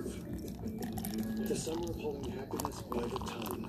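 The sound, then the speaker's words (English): Coffee blonde ale pours steadily into a glass, a continuous gurgling, splashing stream that runs for a few seconds, with faint murmuring voices underneath. “Let's get a little ASMR of a beer pour.”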